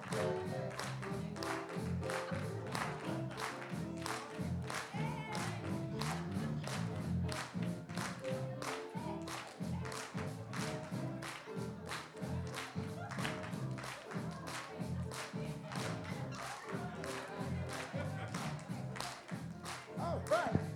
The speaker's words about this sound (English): You can clap. Y'all good clapping church, right? Yeah, clapping church.